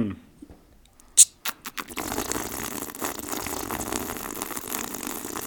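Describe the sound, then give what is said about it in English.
A few scattered clicks and pops, then a steady, rushing bubbling that runs for several seconds without a break: a voice imitating bong water gurgling, breathy and fairly loud. “And then this gurgling sound got to get really fast after you take the bowl out.”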